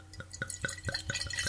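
Wine glugs steadily from a bottle into a glass, a quick run of rhythmic gurgling pulses with a bright, rising splash as the glass fills, close up and with no voices.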